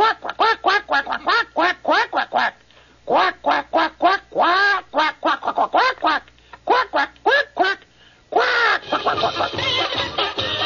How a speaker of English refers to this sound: What character speaks entirely in a foreign language on television and delivers an entire commercial using the following language? Quack, quack, quack, quack, quack, quack, quack.